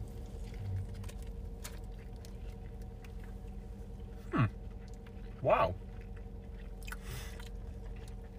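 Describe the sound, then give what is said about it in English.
Soft squishy bites and chewing of a honey chicken sandwich, with a couple of brief louder crunchy moments, under a steady low background hum and a short spoken exclamation. “So it does make it a little harder to eat than a regular chicken sandwich.”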